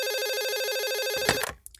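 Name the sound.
telephone ringing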